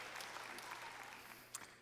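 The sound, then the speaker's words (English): An audience claps steadily, a dense crackle of many hands at an even, moderate loudness with no voices, ending with a couple of sharper claps. “Somebody wants to clap right there. I'm gonna let you.”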